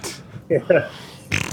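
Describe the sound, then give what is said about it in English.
Two quick, buzzy cartoon fart sound effects from a video game, loud, one right after the other, as the player's character does a fart run in the game's first area, framed by short bursts of hissy noise at the start and end. “Like the fart run that you just did? That's pretty charming.”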